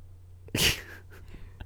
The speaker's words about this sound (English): Don't yawn at me.